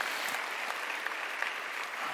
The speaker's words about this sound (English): Isn't that good? You can clap. We can have fun when we're worshiping God too. Amen?